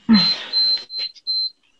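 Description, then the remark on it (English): A refrigerator alarm beeps: a steady, high-pitched electronic tone sounding in three or four pulses of uneven length, starting over a brief burst of rustling noise before fading out. “What's that beeping?”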